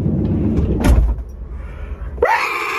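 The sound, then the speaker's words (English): A van's sliding door rumbles and slams shut with a loud thud, followed after a pause by a sudden high-pitched scream from the person who closed it. “I'm gonna close the door and scream real quick.”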